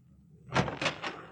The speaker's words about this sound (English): This is the door. I'll open it and you step in